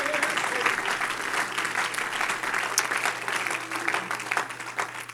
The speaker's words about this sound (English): In Jesus' name, we give you glory. Can we clap our hands and give God praise right now?